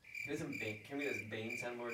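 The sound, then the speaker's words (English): A cricket sound effect played from a soundboard: crickets chirp in a steady, high-pitched trill, joined by lower rhythmic croaking pulses that swell and fade about every half second, like a busy nighttime chorus. “Don't hit the crickets.”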